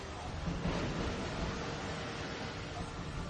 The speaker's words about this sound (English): Oh, it was water. I didn't expect that.